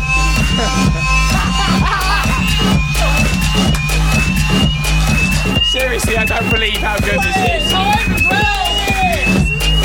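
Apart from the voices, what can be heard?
fire alarm going off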